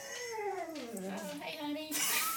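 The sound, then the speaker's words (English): A dog whines in one long, drawn-out cry that slides downward in pitch, then wavers and rises briefly, moderately loud, ending in a brief noisy rustle. “Do you remember when we tried to leave the dogs out of the podcast and we would just be like, oh, we got to cut that.”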